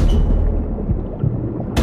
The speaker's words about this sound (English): And the roof of the tank is slammed shut. My fist connects with hard plastic, still very much submerged.